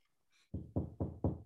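Four loud knocks land in a quick, even rhythm, each a heavy thud on a solid surface, preceded by a brief faint hiss; no one speaks.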